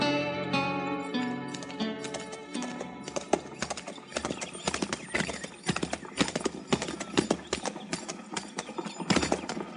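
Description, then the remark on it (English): Horse hooves clop in a steady, uneven rhythm, with a horse whinnying and snorting over them and music playing throughout, as horses are moved at a crowded hitch rack. “move that horse, you're an oar, so I can get mine in there.”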